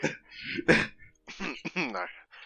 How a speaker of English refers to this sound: I cough a little bit.